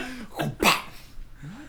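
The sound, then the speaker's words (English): A dog named Cooper whines softly in a few short, wavering high-pitched cries, with a brief sharper yelp or snort in between, all fairly quiet and with no one talking. “You can also hear a Cooper whining faintly.”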